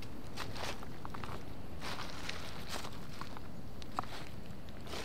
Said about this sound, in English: I can hear your footsteps!